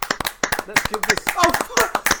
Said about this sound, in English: Let's give this man some applause.